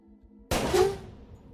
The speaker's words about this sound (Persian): به نظرش میاد بهترین موقع همین الانه، بنابراین خیلی سریع دستش رو بالا میاره و با تپانچه 6 تیرش شروع به تیراندازی میکنه. تیر اول به کلاه نظامی شاه برخورد میکنه.